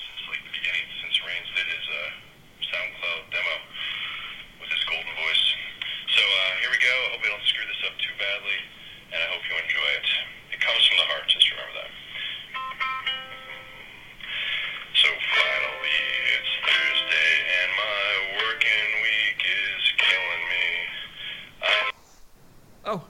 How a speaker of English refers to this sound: I heard you need any voicemail and you haven't had one, so I thought I'd give you one. I've been playing ukulele for like a month, so I wrote you a song.